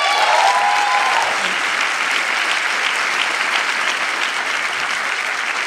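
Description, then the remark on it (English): Loud, sustained applause from a large audience fills the whole stretch, a dense steady clatter of many hands clapping at once with no pause or fade. “There are a few things, you might want to hold your applause.”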